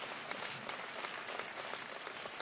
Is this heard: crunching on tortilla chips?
no